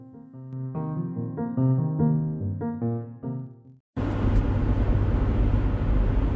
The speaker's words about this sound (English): Here we are, babe. Here we are. We're in the car. On our way.